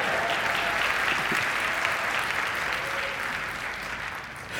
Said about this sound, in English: Yeah, you can applaud him. That's all right.